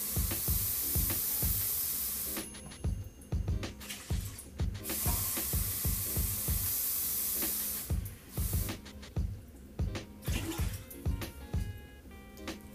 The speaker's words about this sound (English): Then we use this little pot, this little cup thingy. And pour in the ratio of water.